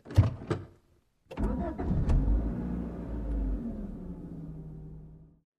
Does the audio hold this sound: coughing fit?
no